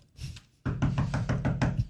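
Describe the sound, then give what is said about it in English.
A quick run of about half a dozen firm knocks on a tour bus door at a truck stop, evenly spaced, after a brief softer thud at the start. “I wasn't even old enough to drive, but I dared to knock on the bus door.”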